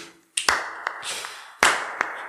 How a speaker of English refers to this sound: Would you mind maybe giving me a bit of clip of clapping over there, Mr. Man? I'm not sure what that is. I can clap my hands, though.